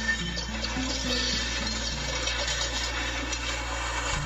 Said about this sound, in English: And along the coast, here, you can see the brutally rough surf. Wow. Now, all that water heading inland, flooding roads and homes.